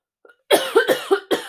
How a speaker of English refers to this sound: I'm going to start coughing. I have to take a drink. Sorry.